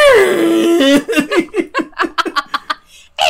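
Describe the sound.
A person voices a shrill, wavering shriek that slides downward for about a second, imitating a high-pitched 1960s–70s film monster roar, then breaks into a run of short, choppy vocal bursts like laughter.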